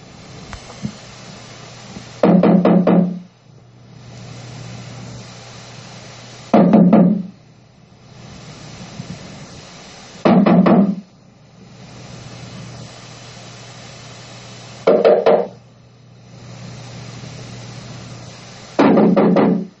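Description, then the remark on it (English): Loud knocking on a door by a man trying to get his wife to answer, in five separate bursts, each a quick cluster of hard raps, spaced a few seconds apart over a steady low background hum. “Maybe I'm not knocking loud enough, baby. I need to freaking knock louder or something.”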